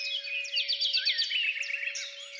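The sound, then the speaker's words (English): A blackbird sings loudly in the early morning among hedgerows and fields near Brest in southeastern France, pouring out quick, rippling runs of bright chirps and trills without pause, over a faint steady hum in the background. “You can distinguish a blackbird singing loudly to wake up the world, and a church bell tolling.”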